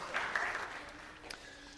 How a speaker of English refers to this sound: Oh, well, I think a shared round of applause for, yeah.